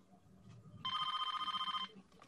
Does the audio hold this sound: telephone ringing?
yes